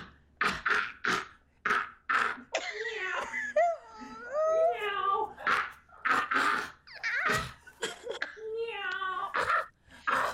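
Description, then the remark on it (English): A person imitates a cat coughing up a hairball: repeated harsh hacking bursts mixed with strained, warbling moans and yowls, continuing in uneven spurts for several seconds. “What's he doing? A hairball. Yes!”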